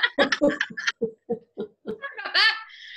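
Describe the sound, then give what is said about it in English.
Young children shriek and laugh in quick, choppy bursts that build into a sustained high-pitched squeal, fairly loud, with no adult speech over it. “Oh, you probably hear my kids screaming.”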